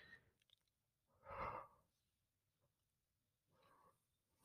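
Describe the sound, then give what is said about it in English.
A person yawns, a drawn-out, voiced yawn that swells and fades, followed a moment later by a softer, breathy exhale. The background is otherwise quiet. “So what I did with that is I started to yawn.”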